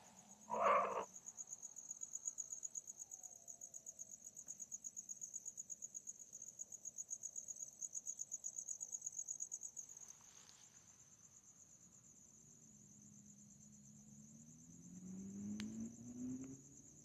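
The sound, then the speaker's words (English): Crickets chirp in a steady, continuous high-pitched trill, as part of an ASMR recording, with a brief sharp knock near the start and a low passing rumble, like a car, toward the end. “Anyway, I hope you're enjoying the crickets.”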